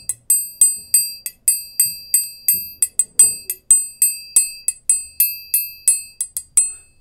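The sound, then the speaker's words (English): A Morse code rhythm for the airport in Toronto, tapped out in bright, ringing bell-like tones: a steady run of short metallic pings, some grouped closer together, repeating at the same high pitch with no voices. “And this rhythm is actually Morse code for that airport.”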